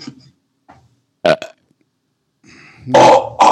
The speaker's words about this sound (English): No, remember we save burps. Say burps. We save burps.